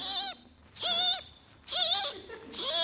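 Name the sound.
bird chirping sound effect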